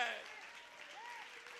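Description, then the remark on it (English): A church audience claps their hands together during a sermon in a dense, steady wash of applause, with a few voices calling out faintly beneath the clapping. “Clap your hands if you believe it.”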